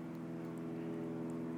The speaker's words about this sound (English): Do you hear that plane overhead?